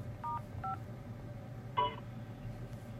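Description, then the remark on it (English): Telephone keypad tones on a conference call line: two short, quiet dual-pitched beeps in quick succession, then after a pause a louder, brighter beep, all over a steady low hum with no talking. “To stop conference recording, press 1.”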